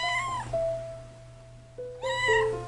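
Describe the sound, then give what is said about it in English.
A cat meows twice, two drawn-out, wavering cries separated by a short pause, clear, with a faint steady hum in the background and no talking. “And I got closer, and I saw a silhouette of a cat.”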